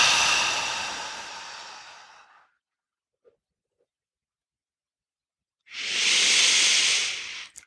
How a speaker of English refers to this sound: Go ahead and push all the air out of your lungs. And last one.